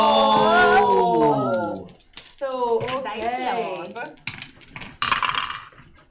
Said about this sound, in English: So we're going to start a new initiative, and while you're rolling these dice, you might want to pray to your dice lords or whoever, because this is going to be a rule of cool round.